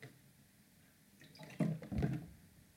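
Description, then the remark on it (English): Close-up drinking sounds: after a quiet moment, two wet gulps or swallows come right at the microphone, with a faint slosh of water between them. Nobody speaks. “And I'm super dry, so I'm going to be drinking a lot of water.”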